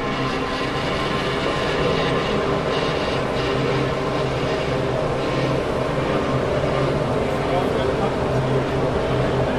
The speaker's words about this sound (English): There you go, that's the warning. There's the cars warming up.